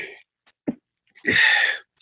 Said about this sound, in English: Another big one is coming at some point. I usually have a three sneeze average.